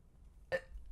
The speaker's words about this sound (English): Oop. Got a burp.